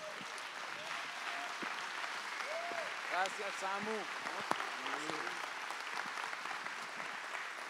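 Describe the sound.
A church audience stands and applauds to welcome a speaker, a dense wash of clapping that holds at an even level throughout, with scattered voices and cheers rising above it.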